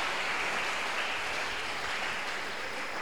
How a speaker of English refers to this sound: Let's put our hands together for Jesus.